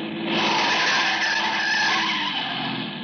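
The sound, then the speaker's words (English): Loud, sustained tire screech as a car skids hard on Marlin Boulevard while the driver swerves to avoid a man who darted into the street, a continuous high squeal lasting about three seconds with no voices. “I cut the wheel, climbed the far sidewalk, managed somehow to keep from turning over, and missed the jaywalker by inches.”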